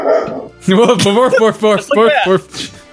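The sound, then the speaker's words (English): A person's voice imitates a dog barking, giving a quick series of about six loud woofs in a steady rhythm, preceded by a soft breathy noise. “Boof, boof, boof, boof, bark, bark.”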